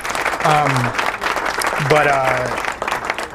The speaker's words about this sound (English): Claps for that. Yes, claps for that, for sure. It's a big deal.